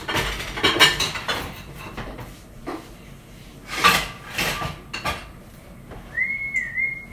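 Kitchen items knock and clatter as they are shifted around a cutting board being readied for chopping potatoes, with irregular thumps and scrapes of wood and dishes, followed by a brief whistled tune near the end.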